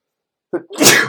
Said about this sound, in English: Hold on. Oh, for some reason, I was about to sneeze. Wow.